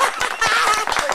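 A short burst of applause welcoming a guest: dense, crackling clapping from a group, steady and fairly loud throughout, with a faint voice or cheer blended into the noise.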